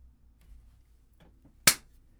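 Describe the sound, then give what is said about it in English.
A single sharp, loud hand clap, made to sync a video recording, cracks out after a stretch of near silence with a low background hum and a few faint rustles, then fades quickly. “Do we have to do another clap?”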